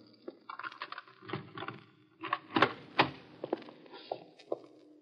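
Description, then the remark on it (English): A key scrapes and clicks in the lock of a store door amid scattered metallic rattles, followed by a louder clunk and knock as the door is pushed open, then a few more light clicks. “Would you have a key to the store? Well, yes, I do.”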